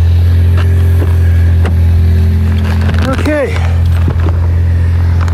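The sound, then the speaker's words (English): A car engine, just started, idles with a steady, loud low rumble throughout, and a brief rising-and-falling vocal sound breaks in around the middle. “She started the car, so probably must be her.”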